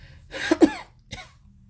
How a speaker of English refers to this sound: There's coughing and then silence.